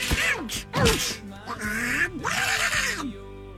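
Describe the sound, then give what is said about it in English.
A raspy Donald Duck cartoon voice squawks and sputters in four quick, agitated bursts, loud, sounding like an angry quacking tirade, played for Donald Duck's birthday. “It's Donald Duck's birthday, everyone.”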